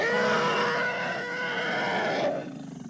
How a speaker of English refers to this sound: Here's the money shot coming up here. That's a real elephant. That's an African bull elephant.